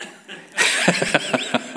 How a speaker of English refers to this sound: Got to be careful when you're clearing your throat.